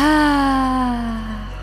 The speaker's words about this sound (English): Inhale, breathing in through the nose. And exhale, sticking the tongue out. Inhale, breath in. And exhaling, lion's breath out. Breath in. And lion's breath out.